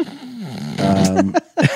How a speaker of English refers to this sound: I only want to hear fart sounds.